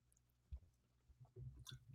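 food or drink, sipping beer

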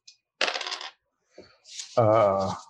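dice being rolled

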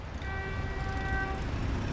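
vehicle, busy street traffic noise

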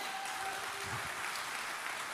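crowd, crowd applause

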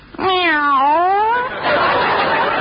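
animal, cat meowing

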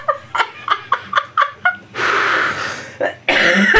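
human body sound, coughing fit

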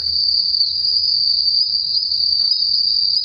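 insect, crickets chirping sound effect

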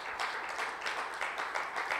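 crowd, audience clapping

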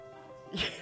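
human body sound, sneeze

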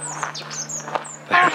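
bird, bird singing

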